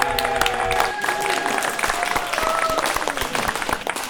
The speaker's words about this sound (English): Everybody, let's give a big round of applause to